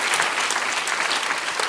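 Steady applause from a crowd, a dense crackle of many hands clapping at an even level throughout, with no pauses or peaks and no voices standing out.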